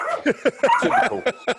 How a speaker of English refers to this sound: Is there a dog attacking your leg? What's up, dog? Oh, bless. Oh. What's that dog got?